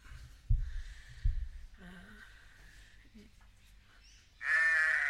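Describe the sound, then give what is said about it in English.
A single loud, wavering bleat of a male sheep bursts in near the end, after a quieter stretch with a couple of dull low thumps and faint background noise. “That's a male sheep where you can do meh, which is meh, meh, meh, meh, meh, meh, meh.”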